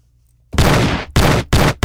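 After a brief hush, a gunshot sound effect erupts in four loud, harsh bursts fired in quick succession, close up and with no voices.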